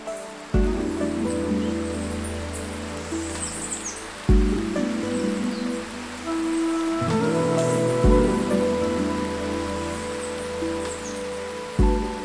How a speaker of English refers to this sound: You hear them before you see them. The roar, the whoosh, the crash. And when you see them, you just stand and marvel. They are the waterfalls of Yosemite National Park, and they leap from some of the most magnificent granite cliffs in the world.